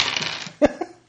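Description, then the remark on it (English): A brief rattle of dice shaken in a hand, then two sharp clacks as they land and bounce on a hard tabletop, fairly loud, with no talking. “All right, I'm going to roll for that”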